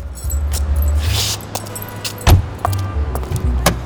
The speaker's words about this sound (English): We've arrived at Snake Manor. Are you two still in car? Yes, still here. Righty. I'll open door.